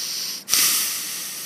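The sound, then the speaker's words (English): A cat hisses once, a sharp, breathy burst that starts abruptly after a brief pause and trails off slowly. It sounds fairly loud, with no voices. “Killer. Cat.”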